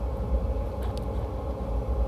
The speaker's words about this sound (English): Now I am traveling in Indian trains where you need a lot of patience.